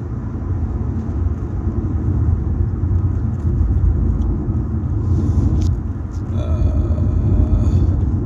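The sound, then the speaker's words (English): Steady, heavy low-end road rumble from inside a moving car, with faint rattles and brief clatters mixed in and a louder scrape around the middle, continuing for the whole stretch. “This rattling of my car ain't helping no poopies.”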